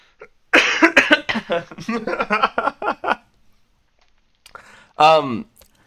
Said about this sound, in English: How was having COVID and being quarantined? You can hear the cough still.